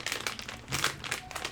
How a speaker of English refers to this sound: Oh, the cheese is so good. No, I love that cheesy snacks. You can hear us eating them. These crunchy cheesy snacks you can get. It's 53% cheese, but it's crackers.